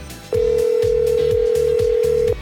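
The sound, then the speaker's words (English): A telephone line tone as a radio host phones a DJ live on air on the Earthquake Mix show: one steady, unbroken mid-pitched hum lasting about two seconds, loud over a thumping beat of background music, with no one speaking. “Let's get him on the horn.”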